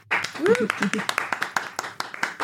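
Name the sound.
round of applause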